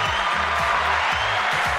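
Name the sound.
applause button sound effect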